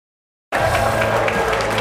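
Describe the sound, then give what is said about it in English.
The New York Stock Exchange closing bell rings in a loud, steady, unbroken clang, mixed with crowd applause and cheering, starting abruptly after a brief silence. “You just heard the bells.”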